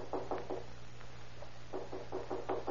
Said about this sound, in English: a feeble knock is heard at the door.